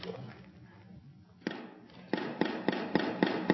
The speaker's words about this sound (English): That's applause. I don't know if you noticed that. I have one person that just thinks this is fantastic.